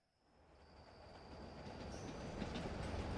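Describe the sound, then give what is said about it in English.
A steam train rumbling along the rails, its noise building steadily from quiet to a loud roar with a faint high whine running through it, and no voices. “and that night two trains departed from Richmond.”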